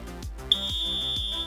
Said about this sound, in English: Turn on the whistle.